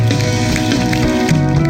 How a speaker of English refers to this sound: Put your hands together. Give the Lord a hand clap of praise here.